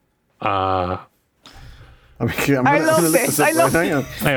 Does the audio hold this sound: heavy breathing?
no